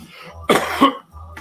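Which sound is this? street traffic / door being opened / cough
cough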